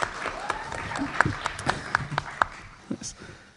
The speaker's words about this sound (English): And they're all here, too. If you want to give a round of applause for them.